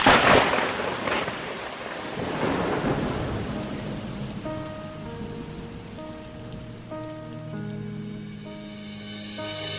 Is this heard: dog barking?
no